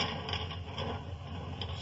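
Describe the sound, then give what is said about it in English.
Heavy bars on a door are drawn back with a steady, grinding scrape and faint rattling clatter, a continuous mechanical noise of even loudness lasting under two seconds, with no voices. “Now, if you'll help me draw the bars, Watson.”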